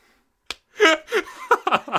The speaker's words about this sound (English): I hope the microphone picked up you slapping your forehead. It probably did. It's very sensitive. Bro, this mic is so sensitive. If it didn't catch this, I'd be ridiculous.